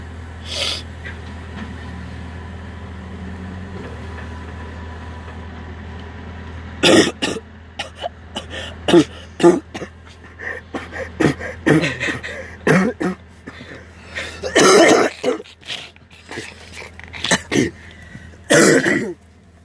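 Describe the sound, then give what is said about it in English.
After a quiet stretch, a person breaks into a prolonged coughing fit: a rapid string of harsh coughs and throat-clearing bursts with short gasping breaths between, continuing to the end. “Yeah, coughing really hurts. And once you start, you can't stop.”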